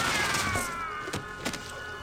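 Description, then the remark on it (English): Violent video game gore explosions burst as the player bursts an enemy, amid dense, noisy clatter, punctuated by three sharp thudding impacts spaced about half a second apart, loud with no talking. “all the weapon sounds and the extreme violent sounds are really good”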